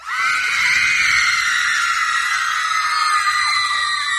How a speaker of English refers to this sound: I got a screaming machine right here. Yeah? It replaces a teenage audience. We put it in the back of the auditorium, push the button, Panicsville. Here, listen.